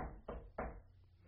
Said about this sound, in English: And no matter how many people there were there, she says, he is at the door. And the Bible says that he kept knocking.